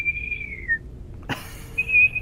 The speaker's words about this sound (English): Okay, so I'm whistling.